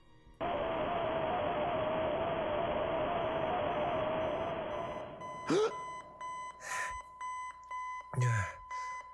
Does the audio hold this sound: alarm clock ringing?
yes